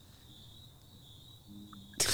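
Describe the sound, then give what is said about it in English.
A steady, high-pitched cricket trill hums quietly and continuously in the background, then a sudden loud, sharp burst, like a sneeze, cuts in right at the end. “Hear those crickets? Yeah, those are real crickets in the background.”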